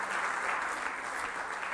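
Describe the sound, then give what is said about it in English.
Steady applause from a church audience for the worship team at a House of David service of Kurt Landry Ministries, a dense wash of many hands clapping at once with no pauses, moderately loud and sustained throughout. “Give the worship team a hand clap.”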